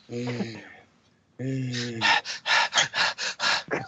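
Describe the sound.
A person pants rapidly and heavily, like a winded dog, in a quick series of loud, close breaths after a brief voiced sound and a pause.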